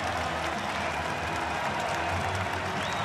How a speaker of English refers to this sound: Those still left in the building. Standing and cheering.